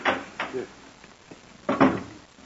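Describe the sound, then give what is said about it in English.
A wooden clothes closet door is handled and shut after a noisy alarm clock is put inside to muffle it, giving a few short knocking thuds and a louder closing bump near the end. “just put it in the clothes closet and close the door.”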